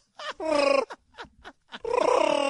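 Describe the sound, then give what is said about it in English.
A person imitates Chewbacca's Wookiee growl: two long, loud, rasping vocal bursts with a throaty, warbling pitch, separated by a few short grunting sounds. “I love the Chewbacca sound.”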